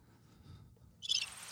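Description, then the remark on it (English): A chirping sound effect played from a soundboard pad: a sudden burst of high, shrill, cricket-like chirping kicks in after a quiet low rumble and continues, bright, to the end. “That was the chirps.”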